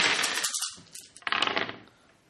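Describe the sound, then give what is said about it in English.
Five dice are rolled for a game roll, clattering and rattling across a hard surface in two quick bursts, a busy tumble of small clicks that settles and fades, with no voices. “All right, I'll give you 5 dice for that, too. All right, go with your roll.”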